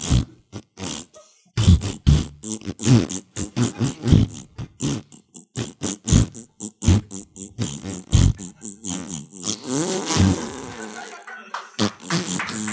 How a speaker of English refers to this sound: Melodic raspberries. What song are we going to do? In like a barbershop.